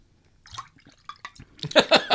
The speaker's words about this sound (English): I'm pouring myself some more.